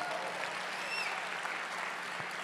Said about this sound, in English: Let's give, for the interpreter, a round of applause, please.